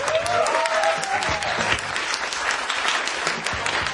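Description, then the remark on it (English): A comedy audience breaks into sustained applause after a stand-up joke about tourists walking, a dense steady patter of many hands clapping at an even loudness for several seconds, with no one speaking over it. “You know you're funny when you get applause breaks.”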